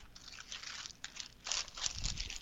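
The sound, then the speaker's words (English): A plastic bag crinkles and rustles in bursts of bright, crackly noise as moist clay is pushed back inside it, with a louder scrunch midway and a dull thump near the end. “Pop it back into our bag.”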